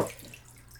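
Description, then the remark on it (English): Photo developer liquid is poured out of a small developing tank in a brief, steady splashing stream, moderately loud, with no one talking. “I got 10 seconds left, so I'm pouring out the developer.”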